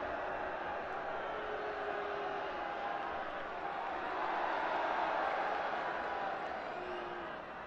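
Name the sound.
crowd booing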